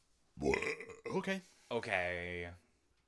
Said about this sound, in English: Okay. With the burps. That was my shock sound because I don't know.